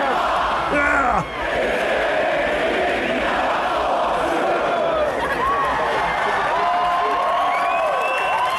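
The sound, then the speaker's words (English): A large concert crowd on a bootleg recording roars continuously at a point where the band would usually still be playing, with overlapping cheers, whoops and shouted voices, including one man yelling to a girl, rising and falling in a dense, loud wash of noise for the whole stretch. “At this point, they're usually still playing, so the crowd took over.”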